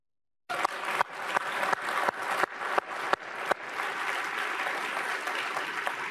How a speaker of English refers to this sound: And they all clap.